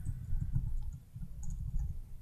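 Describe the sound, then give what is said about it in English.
Soft, irregular clicking like keys being pressed on a keyboard, a quick uneven patter of taps over a low background rumble, fairly quiet. “No, I'm also typing as you talk.”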